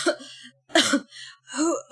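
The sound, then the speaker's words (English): A woman dressed in fine clothes coughs three times in quick succession, each cough a short, rough burst, with brief pauses between them and no talking. “The woman coughs a couple of times.”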